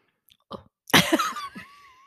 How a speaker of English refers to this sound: Hang on, I'm going to have a slurp of my Everleaf. Let's try the Everleaf.